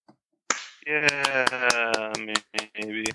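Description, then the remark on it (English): A quick series of about ten sharp, crisp finger snaps in a fairly steady rhythm, ringing out over a sustained voice that hums or talks underneath. “Is that clapping or is that something else? It sounds like something else. I'm snapping my finger together.”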